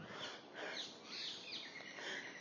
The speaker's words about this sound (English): Hear those birds?